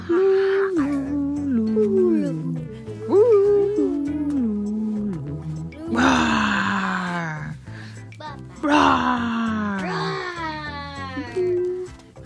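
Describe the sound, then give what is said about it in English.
A voice imitates wild monsters, letting out long wavering howls and gliding wails, broken by two rough, throaty roars, loud for about twelve seconds. “Roar.”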